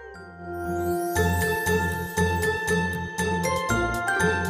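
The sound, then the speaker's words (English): A festive Christmas tune with jingling sleigh bells shaking in a steady rhythm over sustained tones and a pulsing low beat, loud, with no voices. “Whether it be jingle bells,”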